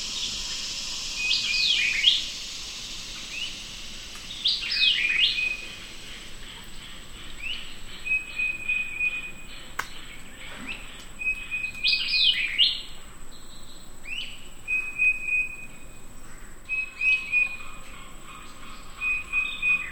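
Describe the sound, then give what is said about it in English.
A titmouse, a white-eyed vireo, a northern cardinal, a red-bellied woodpecker and an American crow call and sing in repeated bright phrases over a steady, dense hum of cicadas and frogs, a dawn chorus at sunrise in the Big Cypress Preserve, with no voices. “titmouse, a white-eyed vireo, a northern cardinal, a red-bellied woodpecker, and an American crow, supported by a backup chorus of cicadas and frogs.”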